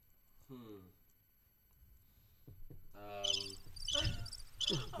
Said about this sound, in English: Crickets.